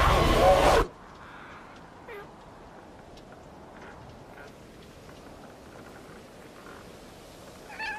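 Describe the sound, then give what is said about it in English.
A brief loud burst of noise opens, followed by near-silence in which a cat meows softly a few times, spaced several seconds apart, with one last meow near the end. “I came to say sorry and bring you this kitty.”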